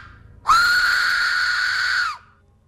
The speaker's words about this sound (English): Sounds like a girl screaming. Yeah, but that's a whistle. Oh, that's a whistle. It's someone blowing through this thing